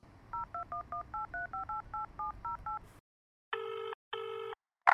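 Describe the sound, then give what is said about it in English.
A telephone number is dialed early in the morning as a quick, even run of about a dozen touch-tone beeps, followed by a pause and two longer, louder tones. No one speaks. “I dialed Kitty, but remembered that there was no way she'd be awake this early in the morning, and instead dialed”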